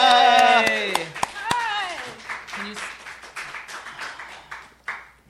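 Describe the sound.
A voice calls out with a rising, excited tone, then a short round of audience clapping for a guest actress being brought out follows, a dense patter of claps that fades after a few seconds.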